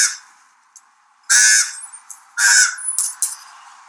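Birds cawing loudly: two harsh, raspy caws about a second apart, with a few fainter short squawks and chirps in between and after, no voices.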